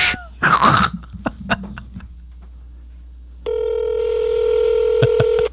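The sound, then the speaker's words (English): A phone call being placed: a few short taps and a rough, cough-like burst, then a steady electronic ringing tone sounds clearly and evenly for the last two seconds, with no talking. “It just keeps ringing.”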